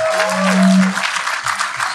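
An audience breaks into steady, dense applause for an audience member about to ask a question, filling the whole moment at a fairly loud level, with a brief tonal note sounding over the clapping near the start.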